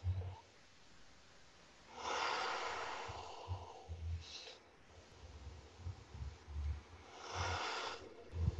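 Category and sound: human body sound, deep belly breathing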